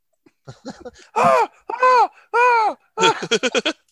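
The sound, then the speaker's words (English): Horrified screams: three loud, drawn-out wails that rise and fall in pitch, framed by shorter cries before and a rapid burst of short shrieks at the end. “Cue horrifying screams.”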